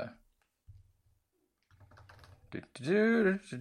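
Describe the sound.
Soft keyboard typing comes in two short bursts of quick clicks, followed by a loud, drawn-out voice at the end.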